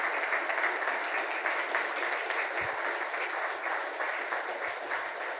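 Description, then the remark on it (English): A church audience claps in sustained, dense applause for everyone who serves in the church, holding a steady level for several seconds, a continuous wash of many overlapping hand claps with no pauses. “If you serve in this church, and I just want a round of applause for everyone that serves right now.”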